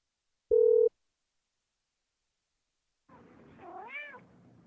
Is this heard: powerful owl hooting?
no